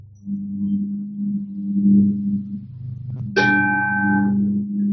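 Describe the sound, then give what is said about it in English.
A low steady hum fills the opening seconds, then a single bell is struck, its bright ringing tone sustaining and slowly fading to the end. “The bell had a question.”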